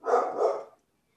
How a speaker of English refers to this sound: Do you hear the dogs? Yeah.